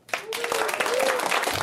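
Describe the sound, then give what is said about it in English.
A crowd breaks into loud, dense applause in answer to how many of them eat sandwiches, starting abruptly and keeping going steadily, with a few voices cheering through the clapping. “Everyone in there, by a round of applause, how many people in here eat sandwiches?”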